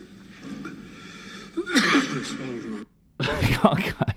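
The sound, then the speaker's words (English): Two rough, raspy bursts of coughing from a man delivering remarks at a hospital in East Jerusalem, the first drawn out with a wheezy edge, then a brief silence before a second harsher fit. “And drinking some water after coughing.”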